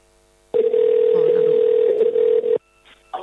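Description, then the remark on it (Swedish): A single steady ringback tone of an outgoing phone call placed from a radio station sounds for about two seconds, loud and unbroken. It then cuts off as a faint voice begins. “Nu höjer jag telefonen lite, kallar i medan.”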